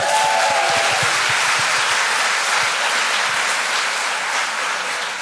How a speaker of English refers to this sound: Please give her a hand.